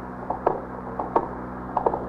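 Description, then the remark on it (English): An elevator mechanism running as the elevator goes up: a steady low electrical hum with a repeating pattern of soft mechanical clicks and clunks, recurring roughly every two-thirds of a second at moderate volume, with no voices. “The elevator's back there, Captain.”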